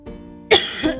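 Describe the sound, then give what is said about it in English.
A single harsh cough bursts out after a brief quiet moment, with a raspy, breathy tail that trails off. No one speaks. “Coughing.”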